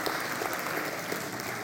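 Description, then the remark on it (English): A crowd claps steadily, a dense, even patter of many hands filling the whole stretch at a fairly strong, constant level with no voices over it. “Because you clapped, I'm not going to sing another verse.”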